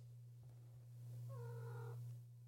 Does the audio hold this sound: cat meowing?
yes